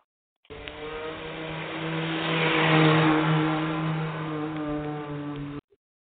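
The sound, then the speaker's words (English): A car engine roars steadily as the vehicle speeds along, its revving growing louder toward the middle before easing slightly, then cutting off abruptly. No one speaks. “You talking about the car? Speeding.”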